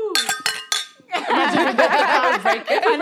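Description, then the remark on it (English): Glasses clink together in a toast, three quick bright ringing taps, followed by people talking and laughing. “Let's cheers. Okay, cheers.”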